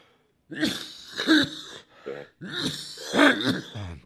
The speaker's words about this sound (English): I'm going to cough again. Hold on.